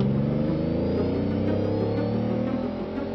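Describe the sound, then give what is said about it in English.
A car engine roars loudly and steadily, its pitch climbing slightly as it revs and speeds down a road, going faster and faster, with no voices over it. “Once he got in his car, he had to go faster and faster and faster. Vroom, vroom, vroom.”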